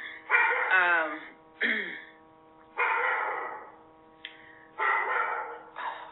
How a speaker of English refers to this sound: Ava's barking at that dog. Through the window.